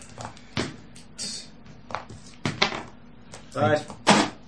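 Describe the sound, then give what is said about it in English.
A few heavy knocks on Riffraff's wooden door land at irregular intervals, each a short dull thud, while people talk between and around them. “Let's go bash on his door, see what Riffraff's got to say for himself.”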